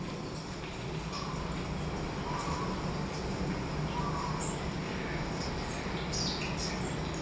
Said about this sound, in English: Then we also have these like ambient sound that's kind of multi-channel sound, which is kind of layered with footstep sound, like whispering sound, and different kind of natural environment sounds, like garden, birds, stuff like that.